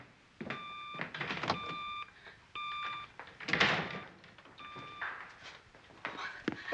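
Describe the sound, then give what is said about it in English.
Repeated electronic beeping from a device, short steady tones sounding in a series of bursts roughly a second apart, fairly loud, with some clattering noise between them. “that beeping sound is beginning to disturb me.”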